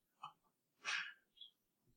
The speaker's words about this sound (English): Bless you, babe.